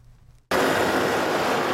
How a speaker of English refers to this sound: Busy traffic roars around the metro line in the center.